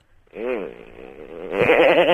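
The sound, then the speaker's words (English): A voice imitates a chainsaw: a buzzy, wavering drone that revs up after a brief silence, dips slightly, then surges louder and rougher for the last second. “Is it a chainsaw? Yeah.”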